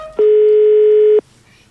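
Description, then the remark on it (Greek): A single steady electronic telephone ring tone, loud, holds for about a second and then cuts off abruptly, leaving only faint background noise. “Κτυπά, κτυπά. Στο τηλέφωνο κτυπά.”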